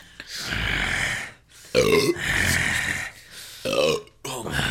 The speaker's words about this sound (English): I'm about to have your blood on my hands if you don't stop belching in the microphone. Hello. I'm trying to move, but they're just so powerful. powerful belches. Powerful belches. They come from my tummy.